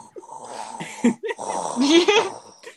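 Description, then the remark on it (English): A voice imitates heavy respirator breathing: raspy, wheezing inhales and exhales with a throaty, hoarse edge, fairly loud and continuous over a few seconds. “In 6 years' time, he's probably gonna have to be breathing like.”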